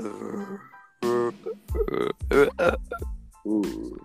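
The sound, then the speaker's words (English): A person imitates a zombie with a string of rough, guttural groans and grunts, about five throaty bursts in a row, with short pauses between them. “make a zombie sound.”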